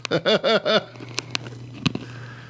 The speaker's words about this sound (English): Here we go. Oh, he's crunching on it. This is 30-year-old bubblegum.